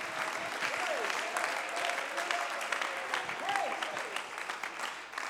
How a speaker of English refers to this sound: Somebody clap your hands in the house of the Lord. Alguien aplaude las manos.